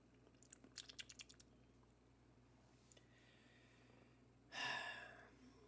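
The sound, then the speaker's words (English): A brief slurp of hot coffee near the end, preceded by a quick run of soft tapping clicks in otherwise quiet surroundings. No one speaks. “Slurping.”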